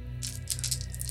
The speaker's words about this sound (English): It sounded like a lot of dice. It was a lot of dice because I'm left here all alone.